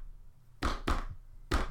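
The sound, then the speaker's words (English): Three heavy, dull bangs on a jukebox: two in quick succession, then a short pause before a third. Each thump is loud and booming, with no voices. “So let me just walk on over here, bang on it a couple times.”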